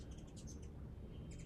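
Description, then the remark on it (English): Two birds chirp in quick bursts of high tweets as they fly overhead, one cluster early and another near the end, heard outdoors against a low rumbling background. “There's two birds fly over me at once.”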